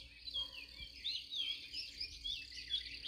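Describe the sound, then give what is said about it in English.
A steady chorus of birds chirping and tweeting at dawn on a farm before the sun is up, many high, quick calls overlapping without pause, soft over a quiet outdoor background. “But the birds are awake.”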